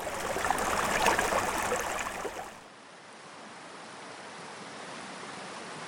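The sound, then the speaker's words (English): Flowing water of the Salmon River in New York rushes steadily with a broad hiss on a beautiful morning, October 9th, 2019, louder for the first couple of seconds, then settling into a softer, continuous wash. No voices. “Good morning from a beautiful day on the Salmon River of New York.”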